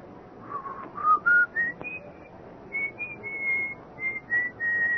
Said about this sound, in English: a little after midnight, just after I'd gotten into bed, I heard it, the whistling. It was an old tune